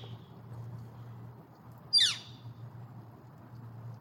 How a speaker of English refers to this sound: What is that? That sound? Yeah. That's a bird. Is that what you wanted to know? That's really helpful. What kind of bird? That's what I was wondering. I don't know what kind of bird that is